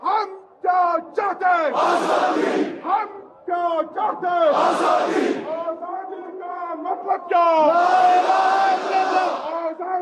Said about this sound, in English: Soon after Article 370 was revoked, protests erupted. First, large crowds of people living in Kashmir took to the streets to protest, saying they want Kashmir to be free and independent.